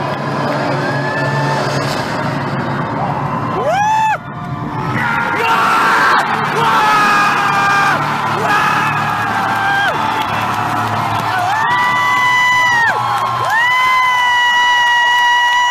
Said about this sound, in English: Hear that crowd? That's passion right there.